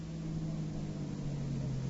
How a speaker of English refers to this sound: a gray sedan just pulled up to the curb. Hey, the drivers are being forced into the car. Car's pulling away.